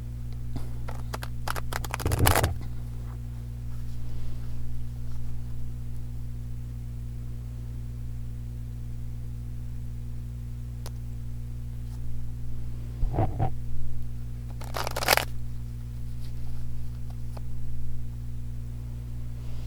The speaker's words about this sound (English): And I think last week I may have shuffled the cards beforehand.